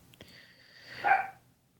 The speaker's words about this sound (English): Can you hear that? Dog barking? Yes, we can.